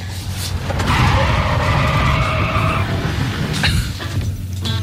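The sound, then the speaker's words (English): Car tyres skid with a loud, high screech lasting about two seconds over a heavy engine rumble, followed by a couple of shorter squeals near the end. “Here's the noise you'll hear if it's a really bad joke and we have to kick out.”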